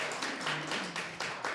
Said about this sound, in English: Thank you so much. Another round of applause, quick.